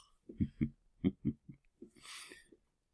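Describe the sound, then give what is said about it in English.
A person imitates snoring with a series of low, rumbling voiced snorts in a steady rhythm, followed by a breathy, hissing exhale. Fairly loud, with no other sounds. “Just me describing the sound of sleep. Really. Well done, that is a topic in itself, isn't it, snoring?”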